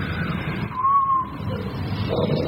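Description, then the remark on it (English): A voice mimics howling wind with a thin, whistly tone that swells briefly in the middle and fades, set against a steady low rumble. “The wind is blowing.”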